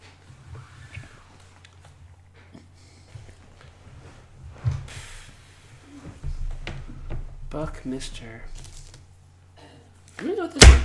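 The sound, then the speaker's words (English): A loud, sharp slap of a hand on a table lands near the end, after several softer knocks and rustles beneath low, murmured voices. “There's no need to slap it on the table.”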